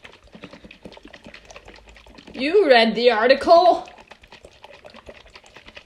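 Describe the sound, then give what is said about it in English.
Liquid gurgles and splashes out of a shaken coconut in a short, fairly loud burst of wobbling glugs lasting about two seconds, with quiet talk before and after. “Well, actually, it's coming out. Shake it again. It comes out faster.”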